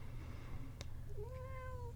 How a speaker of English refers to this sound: He includes pets in this, and you might have just heard my cat, Lucy. She's one that can bring positive feelings to me.